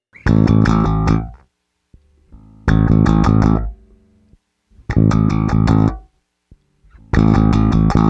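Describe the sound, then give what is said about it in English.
An electric bass guitar plays with a clean tone, before distortion is added, four loud, punchy phrases, each about a second and a half long, separated by brief pauses filled with quieter notes, with no one talking. “I'll start in.”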